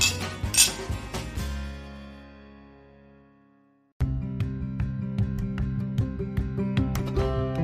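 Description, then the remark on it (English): Glasses clink together in a bright toast near the start, the ringing fading over a few seconds into silence before a dense, rhythmic stretch of tonal sound begins. No one speaks. “Well, I think it's a cheers to that.”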